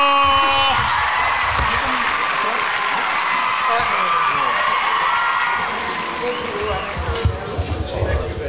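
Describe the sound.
An audience claps and cheers for a couple who were guests, in a dense, steady wash of noise with mixed shouting voices, easing slightly toward the end where a few sharper claps and whoops stand out.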